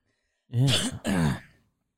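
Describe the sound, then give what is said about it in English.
A loud throat clearing in two quick rasping bursts, each a harsh guttural rumble lasting about half a second, with no talking around it. “I got to clear my throat.”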